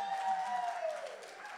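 An audience applauds the speaker's wife at a morning gathering launching a fall series, in a steady, dense wash of clapping that holds at an even level for the whole moment, with a faint tone sliding gently downward through it.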